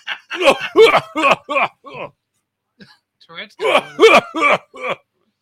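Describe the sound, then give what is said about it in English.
A person coughs in two rapid fits of about five harsh, raspy bursts each, separated by a brief quiet pause, after eating hot pepper sauce. “That was the real cough.”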